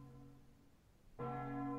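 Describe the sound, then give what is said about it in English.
A large bell in a deserted square rings on with a lingering, humming tone, then strikes again loudly, its rich metallic overtones swelling and ringing out. No voices are heard. “Otherwise, the square seems to be deserted, but the bell is still going like nobody's business.”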